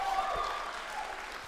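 An audience claps in a steady, dense patter of many hands, applauding a man seated at the front, with a few faint whistles early on, the applause holding at an even, moderate level throughout.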